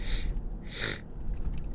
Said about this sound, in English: Sorry about the sniffling. It's a little bit cold here today.